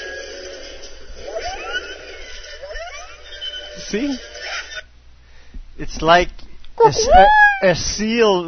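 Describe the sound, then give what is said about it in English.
A film creature's call, a squealing, warbling cry somewhere between a seal and a parrot, with wavering, chirpy pitch sweeps for several seconds. Then a person starts talking. “a seal mixed with a parrot or something.”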